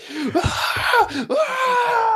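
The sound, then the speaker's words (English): A man screams in pain: a string of loud, strained cries whose pitch swoops up and down, broken by short gasping breaths, continuous for about two seconds. “Oh yeah, he's screaming.”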